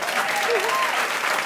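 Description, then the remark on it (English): A crowd applauds in a dense, steady wash of clapping for Adam Davidson of The New Yorker, acknowledged as a contributor at the close of an evening event, with a few rising and falling cheers or whoops cutting through. It stays loud and continuous for the brief moment. “Come cheer.”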